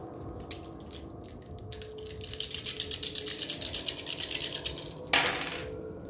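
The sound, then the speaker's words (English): Dice for a tabletop game roll at difficulty 3 rattle rapidly in a shaken hand, a steady run of bright clicking that builds, then a sharp louder clatter as they are thrown and land. No one speaks. “And you're rolling for a difficulty 3, and that's how many dice?”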